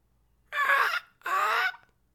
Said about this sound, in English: Do you hear these fucking gulls? Even they're scared for fucking coronavirus. They're freaking out.